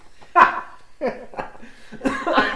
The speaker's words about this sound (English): is now laughing so much that he's choking. Coughing.